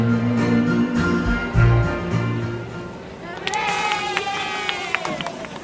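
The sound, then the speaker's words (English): A massive crowd murmurs in a continuous, dense wash of indistinct voices, at first beneath a steady low hum, then opening up brighter and busier with scattered sharp clicks. “Look at the crowd, it's massive.”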